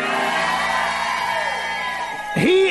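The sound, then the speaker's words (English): A person in an audience during a sermon shouts out loudly, a long sustained cry that sweeps down and rises again at the end, strong with a faint echo behind it. “I'm going to stop till somebody shouts like that some more, man.”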